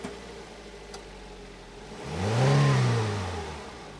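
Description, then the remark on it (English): A car engine turns over and revs up once, its low hum climbing in pitch and swelling louder before easing back down, with no talking. “Start the car and come back in.”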